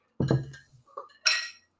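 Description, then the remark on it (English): Drinking glasses clink together a few times: a first bright knock, a small tap, then a sharper ringing clink with a brief shimmering tail. No one speaks. “Oh, let's not break my glasses there, guy.”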